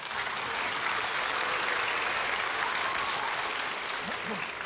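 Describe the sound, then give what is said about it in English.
An audience applauds the panelists at a Founders Ministries event, a dense wash of clapping that holds at an even, fairly loud level for several seconds with no voices on top. “So give our panelists a big hand and a round of applause.”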